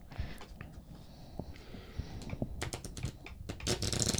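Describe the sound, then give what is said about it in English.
Crisp clicking and flicking of a deck of conversation question cards being shuffled, building into a quick rapid riffle toward the end, with no voices. “Let me shuffle these things.”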